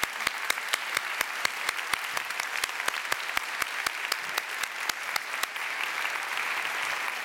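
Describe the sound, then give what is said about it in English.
Audience applause for the translator of the Swedish edition of Minnen av framtiden, published by Norstedts, fills the whole clip. It is a steady wash of many hands clapping with sharp individual claps standing out, with no voices on top, holding level before easing slightly toward the end. “and you deserve an applause, so please raise.”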